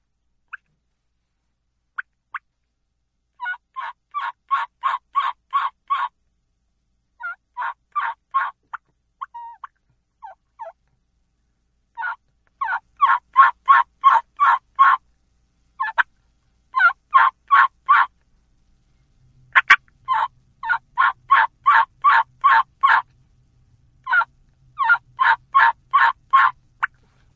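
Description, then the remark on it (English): A hen turkey yelp made on a mouth call, delivered in repeated rhythmic series of sharp, raspy notes with short pauses between runs, fairly loud with no talking. “So here is how I do a hen yelp with a mouth call.”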